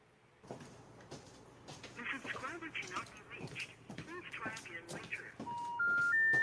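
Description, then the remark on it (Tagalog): Muffled talk, then three steady rising beeps, the kind a phone line plays when a call can't go through. The tones sound clear and fairly loud. “Pati ang phone niya. Hindi naman nagpapatay ng phone yun.”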